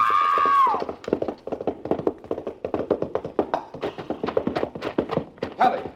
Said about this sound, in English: You were racing. The horse stumbled over that lower bar and threw her.